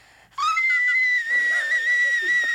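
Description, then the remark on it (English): A person sings a high, piercing, shrill note for about two seconds, loud, sounding much like a whistling tea kettle, with a faint wavering underneath. “It's more of a tea kettle than a whistle tone. That's exactly what it sounds like.”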